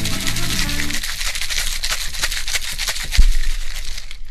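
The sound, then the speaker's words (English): A cocktail shaker full of ice rattles in fast, steady rhythmic bursts, loud and bright, as an Italian Gigolo cocktail with simple syrup is shaken. A brief stretch of low music plays at the start, with no talking. “That song, along with the shake sound, is like a perfect ringtone.”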